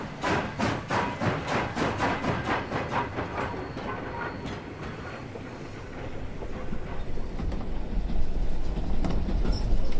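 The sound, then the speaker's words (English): A train bound for Leadville rolls along the rails with a steady, rhythmic clickety-clack of wheels over track joints, fairly loud, the rumble swelling into a heavier continuous roar toward the end. “All aboard! This train is continuing on to Leadville with a 6:15 arrival!”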